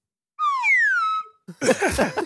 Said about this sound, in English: Hey, hit that slide whistle.